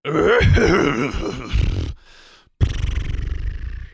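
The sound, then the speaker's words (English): A person imitates a horse: a wavering, quivering whinny-like cry for about two seconds, a brief breathy pause, then a loud rough snorting blow that trails off. “Of course, I am, of course, talking about a horse.”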